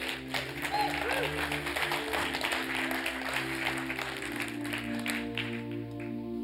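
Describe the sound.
A crowd applauds and cheers, dense steady clapping filling the whole stretch over sustained musical tones, staying fairly loud throughout with a murmur of voices underneath.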